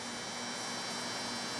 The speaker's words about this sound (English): a long, low, beige-colored building runs under the busy artery of Highway 280. From underneath the overpass, it stretches off into the distance in either direction, about as far as the eye can see. The building is buzzing.